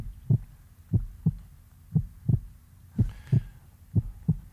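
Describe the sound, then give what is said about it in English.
A steady heartbeat thumps in paired lub-dub beats, about four double pulses over a few seconds, low and muffled as if heard through a stethoscope, with no talking. “So much of our understanding of who we are as humans and what we can do comes from the condition of our heart, from our heartbeat.”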